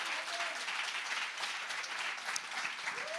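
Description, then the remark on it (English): A crowd claps steadily for a few seconds in answer to a call to clap if they believe God is all-knowing, dense overlapping applause at a fairly even level, with a faint voice or two rising briefly underneath. “Clap if you believe that.”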